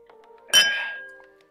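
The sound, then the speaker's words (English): A single bright clink of glasses touching in a toast, sharp, with a shimmering ring that fades over about a second against a quiet background. “Cheers. Cheers.”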